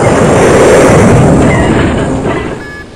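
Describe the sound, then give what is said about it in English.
A loud explosion of a released bomb rumbles with heavy low-end energy, a sustained roaring boom that slowly fades over a few seconds, with some crackling debris-like noise on top. “Shockwave from the explosion, sir.”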